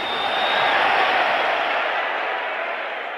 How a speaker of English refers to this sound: Jerry Quarry, the number one ranked challenger, who is, of course, tonight going to be fighting, now on the far side, coming in, of course, the crowd yelling, screaming, mixed boos, again stepping in as a heavyweight, Muhammad Ali.